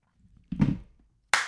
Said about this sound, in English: Do you want to do a little clap?